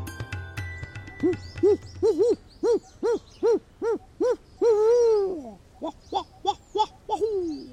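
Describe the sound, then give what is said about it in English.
A series of rhythmic owl hoots, about a dozen short arched calls in quick succession ending in a longer drawn-out hoot, clear with no talking. “In today's episode, he will speak to you on two strict species of owls, the great gray owl and the barred owl, and relate them to the strict species in India, the mottled wood owl and the brown wood owl.”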